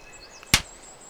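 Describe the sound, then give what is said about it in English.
A single sharp slap of a person's hand against their own skin, loud, cutting through an otherwise quiet background with faint high-pitched hiss. “You actually slapped yourself.”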